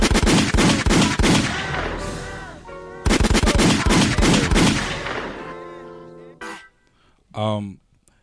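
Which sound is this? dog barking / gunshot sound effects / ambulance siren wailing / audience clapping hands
gunshot sound effects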